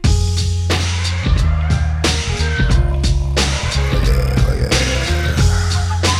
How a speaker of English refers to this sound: Now, we just stole this entire instrumental track from a promotional CD that was laying in one of the piles